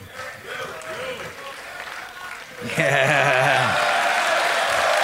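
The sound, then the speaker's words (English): Crowd applause, a steady patter of clapping that swells noticeably louder about halfway through, with voices calling out and talking over the noise. “Don't applaud that.”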